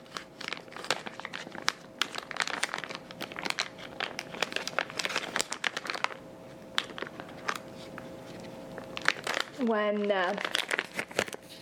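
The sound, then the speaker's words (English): Plastic packaging around a cane tip crinkles and crackles as it is unwrapped, in a dense, continuous run of sharp rustles, with a brief voice-like tone near the end. “we'll open up the tip now.”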